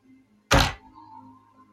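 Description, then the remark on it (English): A single dull knock, a short heavy thump that fades quickly, followed by a faint low hum and near silence, heard after spirits are asked to knock once or twice to answer whether they mean harm. No one speaks. “Knock once for no, you don't mean us harm. And knock twice for yes, you mean us no harm.”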